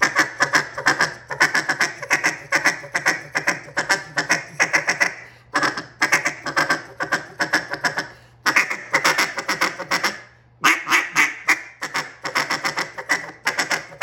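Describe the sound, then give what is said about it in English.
A cut-down duck call blown in a sharp, rapid feed chatter: fast staccato notes rolling in long runs broken by a few brief pauses, loud, with no talking. “Here I'm getting that good sharp feed.”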